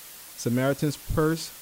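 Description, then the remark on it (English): A steady, faint electronic hiss from the microphone runs through the whole recording, sitting beneath a voice that speaks in short bursts. “I'm going to see what I can do, get done about the microphone and the hissing noise, but until then, you have to bear with me.”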